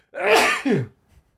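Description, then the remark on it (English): A single loud sneeze: a sharp breathy burst followed by a short voiced tail that drops in pitch, then a faint breath afterward. “Sneezy.”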